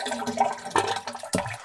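A toilet flushes in a short, rushing surge of water, with gurgling bursts and a fresh splash near the end, with no voices.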